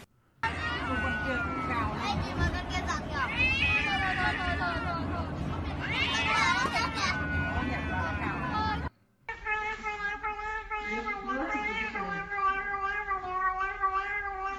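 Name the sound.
cat meowing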